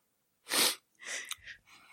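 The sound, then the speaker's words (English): A single small, soft sneeze, a short breathy burst, followed by a couple of quieter breathy, sniffly sounds. No one speaks. “That was a really pathetic sneeze.”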